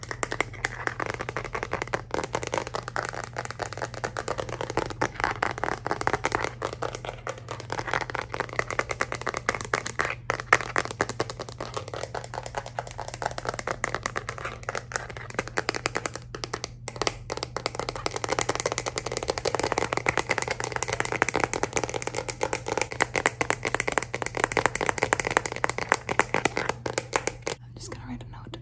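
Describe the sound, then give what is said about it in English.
Rapid, uneven tapping and clicking on a phone case continues for about half a minute, with soft whispering running underneath and a steady low hum in the background. “You guys said you really like the phone case tapping.”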